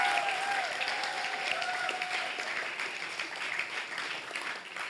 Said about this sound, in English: That was good, right? Can we give him another round of applause for that?